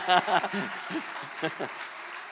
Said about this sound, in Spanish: De un aplauso, que está buena esa.